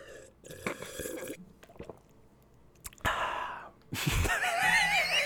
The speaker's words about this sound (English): I got to get some water. Do you guys want to listen to me drink some water? Listen.